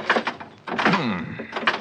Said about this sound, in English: This door doesn't seem to want to... You trying to pull some trick? No. Open that door. Well, it's stuck, I guess. Well, here, I'll do it.